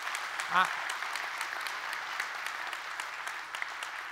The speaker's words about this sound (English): You love the Lord today? Yeah. Let's give him a good hand clap today. Come on.